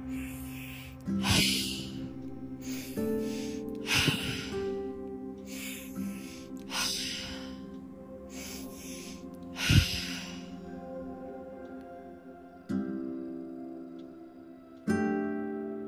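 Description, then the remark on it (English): Steady, rhythmic breathing in through the nose and out through the mouth, with audible inhales and exhales repeating every second or two over a soft, sustained musical drone. No one speaks. “And whenever you're ready, start breathing in through the nose, out through the mouth continuously.”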